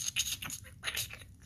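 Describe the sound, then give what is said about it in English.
A voice imitates crackling sparks with a quick series of hissy, sputtering bursts, bright and sibilant, rising and falling over about a second and a half. “You like my spark sound?”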